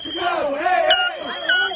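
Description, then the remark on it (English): A loud crowd of protesters chants and screams in rising, wavering voices at Detroit's Belle Isle as former Detroit Police Chief James Craig announces his run for governor as a Republican, while two short air horn blasts cut through the noise near the middle and again toward the end. “No, not the air horn, not the chanting or the screaming.”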